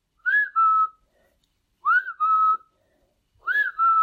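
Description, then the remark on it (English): A person whistles an imitation of a black-capped chickadee call: three evenly spaced two-note phrases, each a bright rising note followed by a slightly lower, held tone, with short pauses between. “Which, in case you don't know what a black-capped chickadee sounds like, they're my favorite bird. They go...”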